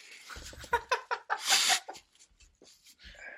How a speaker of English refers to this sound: I apologize in advance. I do have to blow my nose, though. You got it. Mm-hmm. I'm serious. Yeah, blow your nose.